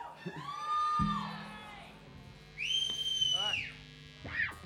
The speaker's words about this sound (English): That's a good whistle. Hey, good whistle.